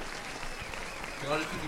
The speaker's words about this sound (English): Claps for that. Claps for that. The audience, like, yeah. Like, funny joke. Oh, bloody hell. Yeah. They're going to keep clapping for you anyway.